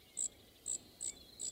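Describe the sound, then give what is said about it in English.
A Brewer's Sparrow song: four short, very high, thin buzzy notes repeat at a steady, even pace, alone against faint background hiss. “In the wide open spaces of the American West, a dusky brown bird holds forth with an impressive song.”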